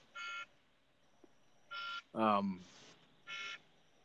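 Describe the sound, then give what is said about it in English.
An electronic alarm beeps in short, evenly spaced bursts about every second and a half, fairly loud, with a brief voice cutting in between two of the beeps. “wake up, Kyle, your alarm's going off”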